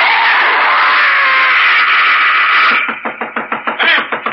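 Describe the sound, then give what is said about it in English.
A woman lets out a long, loud, piercing scream lasting a few seconds, then it breaks into a rapid run of sharp, rhythmic knocking at a door. “They heard you scream.”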